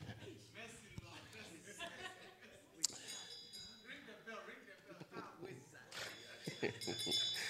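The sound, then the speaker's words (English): A bell rings faintly and briefly, its thin high tone barely rising above overlapping voices and chatter, then a second weak ring trails off near the end. “Listen, that was a bell with no conviction at all.”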